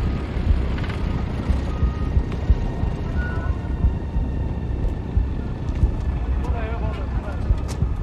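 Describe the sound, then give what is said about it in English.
A truck on the left side: its heavy engine rumbles while a reversing alarm beeps steadily over it, with other vehicle noise in the background. “Truck, left side.”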